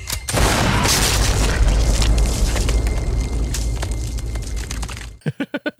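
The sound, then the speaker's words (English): A sudden, loud shotgun blast erupts into a sustained, roaring rush of noise lasting several seconds, then cuts off into a few quick rhythmic pulses. No one speaks. “She then manages to get herself off the tree and grabs what I think is a dragon's breath shotgun off the ground and begs for what's left of the killer's body to get up for one last scare, but he won't budge.”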